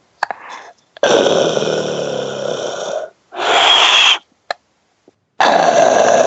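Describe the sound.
A voice imitates the labored, heavy breathing of a man sitting behind the speaker in a movie theater during a film: three loud, rasping wheezy breaths of uneven length, with short gaps and a few faint clicks between them, no other talk.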